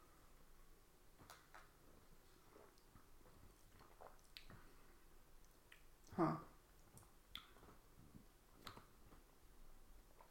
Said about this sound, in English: I know listening to us silently sip our beers is podcast gold, but it doesn't really.